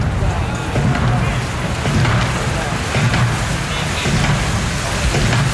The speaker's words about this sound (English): Rhythmically, the drums beat, the state royal standard catching the breeze above the palace, and the crowd applauding once again. A huge spontaneous round of applause in praise of the 4,000 members of the armed forces who've taken part in that parade